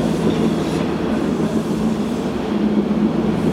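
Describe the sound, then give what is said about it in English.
A train rumbles past, a loud, steady roar of heavy wheels on rails with a low mechanical drone and faint clacking throughout, no voices heard. “All right, plane went by, train went by.”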